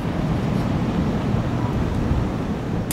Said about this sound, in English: All day it has been so windy here. The winds continuing this evening.